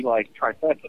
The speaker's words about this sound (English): Oh, my goodness. So many echoes. We are lost in time.